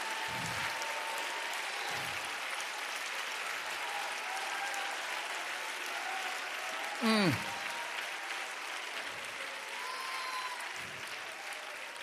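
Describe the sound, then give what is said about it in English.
A church audience claps its hands at a preacher's call, a dense, steady wash of applause that lasts the whole time, with a brief sharp whoop rising above it about halfway through. “Clap your hands again, all ye people.”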